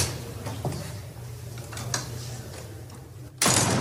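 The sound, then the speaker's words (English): A door is slammed shut on a reporter asking a question, a loud, sharp thud near the end over a steady hum, after a few faint knocks and clatters. “Slams the door on the reporter asking about that.”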